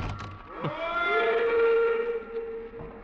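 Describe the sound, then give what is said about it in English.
A train whistle blows one long, steady blast as the train pulls away, sliding up at the start, holding for a couple of seconds and then fading, with a low rumbling background underneath. “I stood there on the embankment as the train pulled away.”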